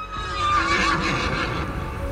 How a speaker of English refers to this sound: It made an almost musical whinnying sound, shook its silver mane, and trotted back towards the woods it had come from.